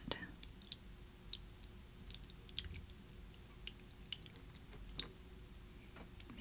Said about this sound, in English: Okay, I'm going to pour this on the back of a spoon, because that's going to keep it from sinking down too.